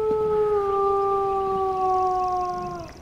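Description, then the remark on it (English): A wolf howls in one long, steady, fairly loud note that holds its pitch for about three seconds before dipping and fading at the end, with no voices. “And they're highly social animals who live together in packs of 5 to 10 members.”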